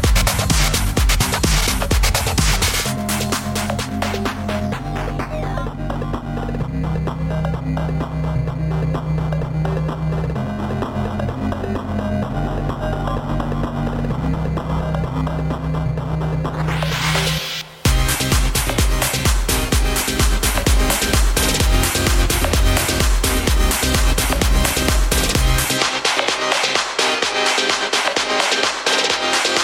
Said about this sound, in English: Just warms your track up. Distortion.